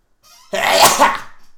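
A single loud sneeze with a brief breathy intake before the sharp burst, trailing off quickly into silence.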